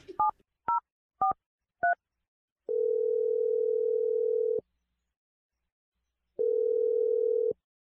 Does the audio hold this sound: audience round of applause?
no